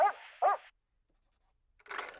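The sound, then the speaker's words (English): A human voice mimics a dog with two quick barks in a row as an answer during an exam for the MacArthur Genius Grant, then a short silence and a brief breathy, noisy burst. “A dog says...”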